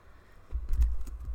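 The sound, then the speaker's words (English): A cat stepping across a computer keyboard: a few soft, irregular key clacks over dull low thumps, fairly faint, with no one talking. “My cat just jumped on the keyboard.”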